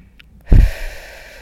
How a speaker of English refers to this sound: And I'm going to invite you to take a deep breath in through the nose. And as you exhale, you can even make a sighing sound with the mouth. So breathing in.